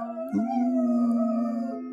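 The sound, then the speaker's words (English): German Shepherd dogs in a house howl along with a siren in a long, sustained, steady note, several voices layered in a wavering harmony, fairly loud, with no talking. “You have wolves in your house? They're harmonizing.”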